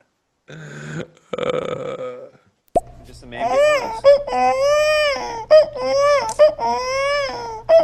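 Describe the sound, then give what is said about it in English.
A person's voice mimics a crying infant: a brief breathy lead-in, then a run of wavering, high-pitched wails rising and falling in repeated sobbing bursts, loud and sustained with no other talk. “That was a pretty convincing baby noise.”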